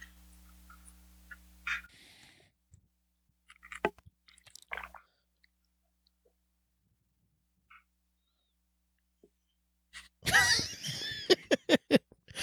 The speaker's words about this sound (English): I heard you drink something, and I thought, man, I wish I had something to drink. That is me drinking some milk.